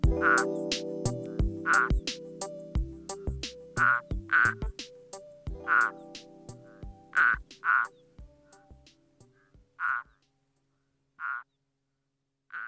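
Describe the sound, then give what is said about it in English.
A turtle frog calls over and over, about a dozen short, croaky pulses in a loose rhythm, loud, with a low background rumble that drops away before the last few calls. “The Turtle Frog just lost us 3 followers on Twitter.”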